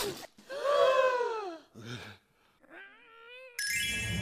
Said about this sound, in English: From making to baking, content as you please, when off in the distance, they heard a loud sneeze.